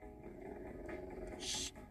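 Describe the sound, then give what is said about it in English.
A low, rumbling dog growl holds steady for about two seconds, fairly loud, with a brief raspy breathy burst near the end. “He's like, I'm gonna get you. He's growling. Yeah, he's gonna growl.”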